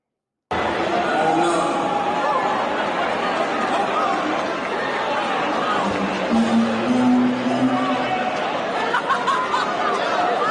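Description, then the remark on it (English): A large audience boos a female performer off stage, a loud, continuous wall of crowd voices with jeers and scattered shouts rising and overlapping for about ten seconds. “Sorry, it's kind of loud. It's the audience booing her off stage and everything.”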